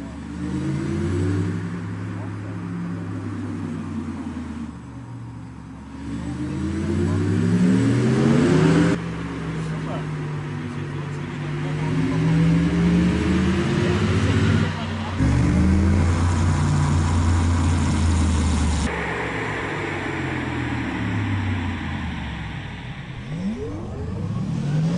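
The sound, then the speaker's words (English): A synthetic acceleration sound created for the Audi R8 e-tron electric sports car: a smooth futuristic hum with layered tones that rise and fall in pitch through repeated surges, loud, with no talking. “And they actually have created a sound for when the car is accelerating.”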